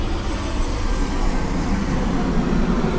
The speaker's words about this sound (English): Ooh, airplane.